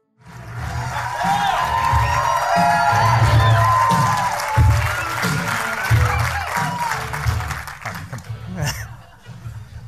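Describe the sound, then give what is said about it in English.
A crowd cheers and applauds loudly, with whoops and shouting voices over steady clapping that holds strong for several seconds, then gradually thins out toward the end. “Okay, so these guys all know me, so that's why they're cheering so loud.”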